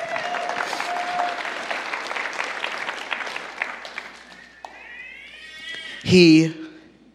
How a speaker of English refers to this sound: Give him a hand clap.